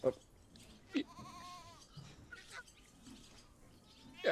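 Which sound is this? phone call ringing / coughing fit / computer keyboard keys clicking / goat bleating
goat bleating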